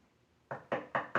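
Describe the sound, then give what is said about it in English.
Four firm knocks on a wooden door in a quick, even rhythm, loud, with no voices present. “Good heavens, who on earth could that be? Sheriff, would you get the door, please?”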